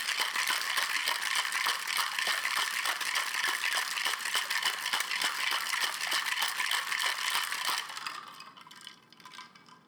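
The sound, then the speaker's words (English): Ice rattles hard inside a cocktail shaker, shaken 40 times to mix strawberry fizz, in fast, steady strokes for about eight seconds, loud and bright with no talking, then the shaking stops and a faint clink and hiss trail off. “If you counted them, that was 40 shakes exactly.”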